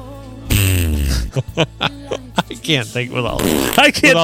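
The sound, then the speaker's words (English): A loud, buzzing fart noise, apparently blown with the mouth, runs for under a second, followed by a string of sputtering, voice-like bursts and short vocal sounds. “I can picture him, but too many fart noises in my head.”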